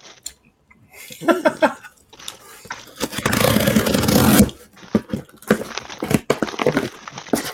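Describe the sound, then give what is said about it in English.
Paper and packaging rustle and crinkle as several people unwrap merch packages and open boxes at the same time, with a sustained burst of loud tearing and crumpling in the middle and lighter handling noises around it. “Why we just all open at the same time? I just took mine out the paper.”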